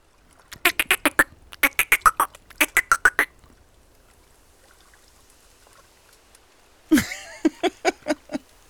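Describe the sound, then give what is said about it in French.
A marsh frog's croaking call: loud bursts of rapid, raspy pulses in three quick groups, a short lull with faint background noise, then a final chuckling run of croaks. “Ça fait un peu la grenouille rieuse.”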